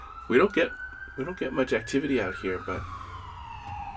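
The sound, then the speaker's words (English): A big box ambulance's siren wails steadily behind people talking, its pitch creeping up and then sliding lower as it passes by. “there it goes. It was an ambulance.”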